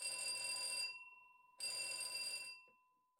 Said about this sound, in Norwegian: Beklager, der kom brannalarmen midt I podcasten vår, så da måtte vi gå ned på gaten, 10 etasjer og opp igjen.